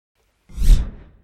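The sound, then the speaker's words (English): A single swoosh transition effect rushes in and sweeps past, swelling quickly to a full, airy peak before trailing away in a soft tail, with no voices. “Let's all go away and do our thing, and I'll put a little swoosh sound in and we'll come back, shall we?”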